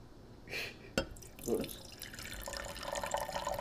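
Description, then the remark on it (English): A sharp clink is followed by a steady pour of wine into a cup, a bubbling, trickling stream that builds over the last second or so. “You just gonna pour the whole cup? No, don't pour it in my cup. This is a different kind of wine.”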